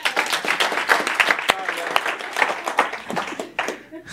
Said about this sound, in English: Someone clap